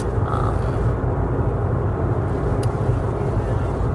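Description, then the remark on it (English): A steady, loud low-frequency rumble of road noise fills a moving car's cabin at highway speed on the interstate, a constant droning roar with no breaks and no one speaking. “My car is a little bit loud. I'm on the interstate.”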